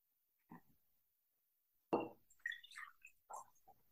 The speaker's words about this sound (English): Now you've already affixed the new timeline to your second glass, the receiving glass. So right now you're going to ritualistically pour your water into your new timeline glass.